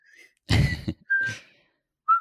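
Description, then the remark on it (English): A few short, bright whistled notes by POWs in a movie, fairly loud, broken up by a brief noisy burst near the start, with no one talking. “So how many whistling POWs out of five would you give this movie?”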